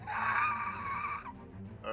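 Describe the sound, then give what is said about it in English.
A human voice imitates a creature's screech during a tabletop game, the creature rising on its back legs and stretching its body up: one loud, sustained, raspy high-pitched shriek lasting over a second, followed by a short lull and the start of another vocal burst. “It's gonna stretch its body all the way up. And it's gonna release a screech.”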